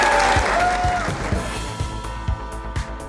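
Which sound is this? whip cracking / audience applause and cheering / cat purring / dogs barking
audience applause and cheering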